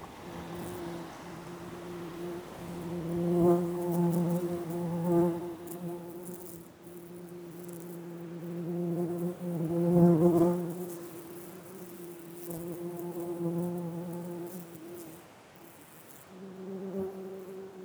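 A bumblebee buzzes with a low, steady drone that swells and fades as it moves around, dipping briefly before returning. No one speaks.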